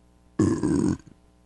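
A single loud, close burp, deep and rumbling, lasting about half a second before cutting off into quiet, with no talking over it.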